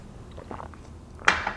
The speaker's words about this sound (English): Of course, let me get a sip of tea.